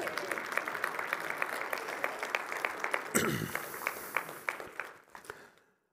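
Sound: audience applauding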